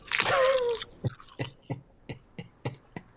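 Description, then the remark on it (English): A loud crackly rustle gives way to someone chewing a crunchy kale snack, about eight crisp crunches in a steady rhythm, with no talking. “It was a kale snack. I hear you, but I don't. This is delicious.”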